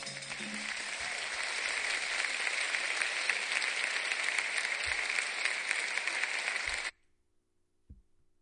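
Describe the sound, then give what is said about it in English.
A crowd applauds a band steadily for about seven seconds, a dense and loud wash of clapping that then cuts off abruptly, leaving near silence with a couple of faint thumps. “you give my band a big round of applause?”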